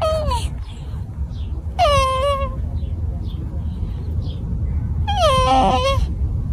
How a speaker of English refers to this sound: It could just be a turtle humping a rock or a shoe. We've played audio in the past of this, but I found a new clip. You tell me this isn't just adorable. Turtle has mounted a shoe.